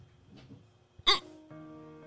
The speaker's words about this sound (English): I got the hiccups so bad. Hold your breath.